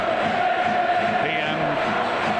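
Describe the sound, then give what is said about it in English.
A dense roar from a big crowd of Wrexham football fans cheering and chanting at the final whistle of a match against Tranmere, loud and sustained throughout with no break, voices blending into a steady wash of noise. “Ringing out around three sides at the final whistle, but the Wrexham fans making a heck of a noise.”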